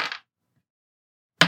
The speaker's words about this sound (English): Yeah, so I rolled two. Two dice. Yep. The numbers I rolled were a one and a three.